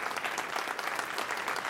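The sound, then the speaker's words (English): A crowd applauding after Her, directed by Spike Jones, is announced as the winner: dense, steady clapping at an even volume for the whole stretch, with no voices over it. “Pause for applause.”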